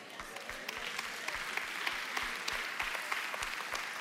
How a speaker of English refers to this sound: I'm all for the claps. I clap. I'm all for the claps.